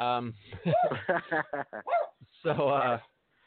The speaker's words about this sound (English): Oh, good. Like, you're getting a UPS delivery. Fucking dog.